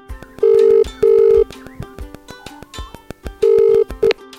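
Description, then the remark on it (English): A telephone rings before the voicemail greeting answers, in loud, steady double bursts, pauses, then starts ringing again and cuts off, with faint rhythmic tapping underneath and no voices. “Leave your name and number after the phone, I'll get back to you.”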